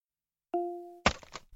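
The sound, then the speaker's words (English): An axe smashes through a locked door: a brief steady tone gives way to a loud splintering crash, followed by a few quick clattering knocks that trail off. “Use axe on door.”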